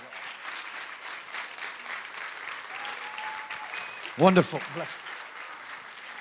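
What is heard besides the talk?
audience applause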